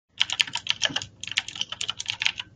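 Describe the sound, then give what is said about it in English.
Rapid, steady typing on a Razer computer keyboard about five years old, a quick clatter of keystrokes with a brief pause near the middle, with no voices. “So what kind of keyboard do you have”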